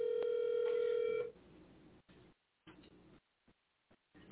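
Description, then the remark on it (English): A loud, steady telephone tone holds for just over a second as a caller tries to call back in, then gives way to choppy bursts of line noise broken by silent gaps, like a call failing to connect. “The call keeps failing.”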